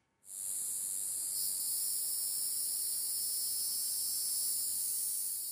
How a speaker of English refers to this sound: While summer cicadas filled the late afternoon air with trilling white noise